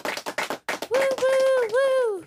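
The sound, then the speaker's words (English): A handful of quick, sharp claps, then one voice, the guest cheering for herself, cheering loudly with a long, sustained, wavering high-pitched whoop that slides down at the end. “Hey, that was me. I'm cheering for myself.”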